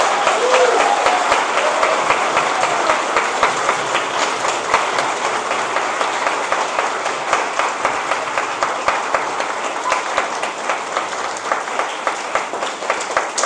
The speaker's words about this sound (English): But I think since we're all together now, we should make sure, let's give a big round of applause to our teachers for all they do for us.